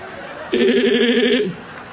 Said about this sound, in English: Oh, my God. Pastor Locke and the goat noises.